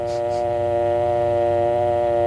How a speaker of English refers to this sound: Then remove the receiver and listen for the dial tone. It sounds like this.